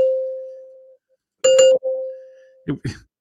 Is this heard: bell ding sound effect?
yes